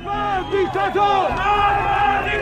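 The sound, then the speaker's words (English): A large crowd of protesters chants the slogan "Magbar Diktator" ("death to the dictator") in unison, many raised voices merging into a loud, continuous roar with swooping, rising and falling pitch. “They're shouting, Magbar Diktator, death to the dictator.”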